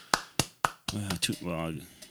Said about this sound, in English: Golf clap or... No, fucking give him the good one.